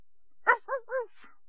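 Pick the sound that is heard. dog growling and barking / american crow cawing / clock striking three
dog growling and barking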